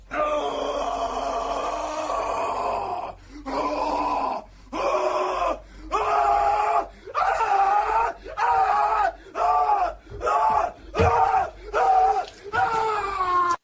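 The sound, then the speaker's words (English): A loud, anguished horror scream by actor Nick Cage from a movie: one long drawn-out cry of about three seconds, followed by a rapid run of roughly ten short, repeated screaming bursts, intense with no talking. “But for me, if I liked it, I'm going to give it a Nick Cage horror scream.”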